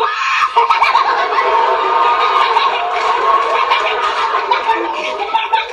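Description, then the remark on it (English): Someone imitates a goose with a loud stream of nasal, gobbling squawks that runs without pause for several seconds, harsh and bird-like. “Unfortunately, the pesky machine mistook my mom for a Christmas goose.”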